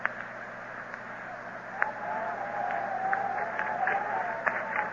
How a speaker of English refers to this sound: The wind is beginning